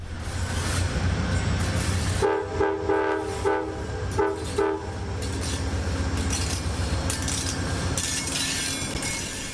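A train reverses steadily along the track with a continuous low rumble, and a stretch of sharp tonal horn-like squeals and clanks rises partway through before the rumble carries on alone.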